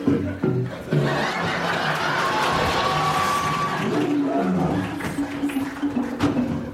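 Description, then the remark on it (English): A loud lion roar rumbles on for several seconds, rough and sustained, swelling and then breaking into a few shorter growling bursts near the end. “Okay, you guys, watch me turn into a lion.”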